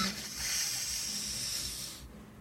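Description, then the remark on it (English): Someone snorting drugs in a toilet stall: one long, steady, airy hiss of inhaled breath lasting about two seconds, then cutting off abruptly. No one speaks. “as people seem to be snorting drugs.”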